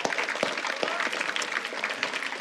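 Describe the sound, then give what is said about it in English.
A crowd at a college ministry gathering applauds its table hosts steadily, many hands clapping in a dense, continuous patter at a moderate, even loudness with no one speaking. “All right, so why don't we all give them a round of applause.”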